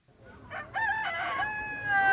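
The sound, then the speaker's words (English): A rooster at a chicken shop in Nairobi, Kenya crows once, loud, its call rising and then drawn out into a long, wavering note over a faint background hum. “Javed Malonzi's mandazi stand is right next to the chicken shop.”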